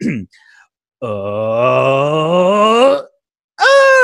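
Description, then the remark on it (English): A person vocally imitates the two-part anguished scream Morgan Le Fay gives in a film: a long, strained groan like a motorcycle revving up, rising slightly in pitch for about two seconds, a brief pause, then a sharper, higher wail of anguish. “it's like a two-part scream, and the first bit is like a sort of motorcycle revving up, and then she sort of does a secondary scream of anguish.”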